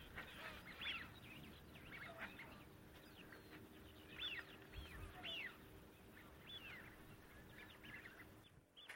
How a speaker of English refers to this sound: The shell duck far out on the marsh, lots of shell ducks.